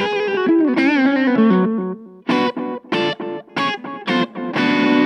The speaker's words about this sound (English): It goes from clean to dirty to full saturation. I'm just running a Telecaster here through it for you. And it's got this cool analog echo section.